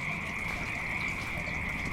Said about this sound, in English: Oh yeah, those are totally frogs. This is Frog Town.